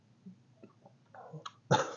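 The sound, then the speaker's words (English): A person imitates the sick, wheezy cough of a tuberculosis patient: a few quiet throaty sputters build up, then end in one loud, harsh hacking burst. “Coughing up blood shit.”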